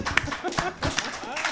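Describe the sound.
Brief, scattered audience clapping, a handful of sharp irregular claps over about a second and a half, with voices murmuring and talking underneath.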